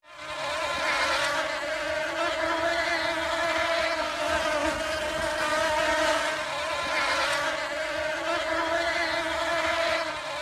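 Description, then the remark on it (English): A dense swarm of bees hums continuously, a steady droning buzz that barely rises or falls across the whole stretch, with no voices. “The sound of Euston Station during a rail strike. That was Bees.”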